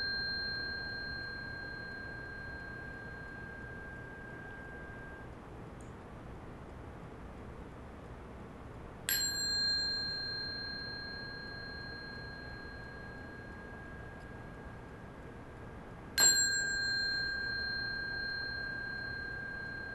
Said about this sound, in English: Did you hear the bell? Yeah. Not a trick question yet, okay? You heard the bell, right? Did anybody have an impression of the bell?